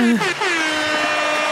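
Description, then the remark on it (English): A single loud, sustained air horn sound effect with a brassy, buzzy tone, played by the show's producer. The pitch slides briefly downward at the start, then holds steady for about a second and a half, with no talking. “Producer, that's where the laugh track comes in, or claps or air horn.”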